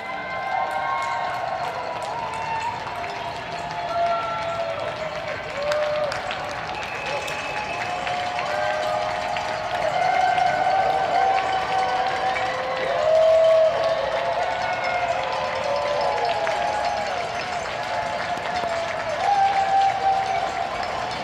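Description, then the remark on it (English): A neighborhood crowd cheers in support of medical staff, nurses and front-line workers fighting coronavirus: continuous clapping, shouts and high whistles blend into a steady, fairly loud roar that holds for about twenty seconds without letting up. “everyone's cheering in support of medical staff and nurses and everyone that's out there really on the front lines fighting coronavirus”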